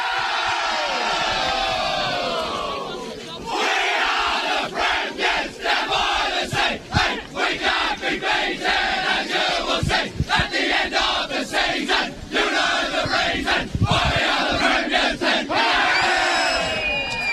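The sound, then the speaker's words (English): A team of men belts out their club song together, a loud, rowdy chorus of raised voices that turns into rhythmic, shouted bursts through the second half. “All right, boys, is that to sing the song, I think, and this one's going to be sung with plenty of gusto.”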